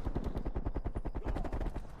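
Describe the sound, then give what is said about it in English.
Sustained video game machine gun fire from enemies spraying at the players rattles off in a fast, steady stream of sharp, punchy shots, loud and continuous for the whole stretch with no voices over it. “These guys are just spraying us now at this point.”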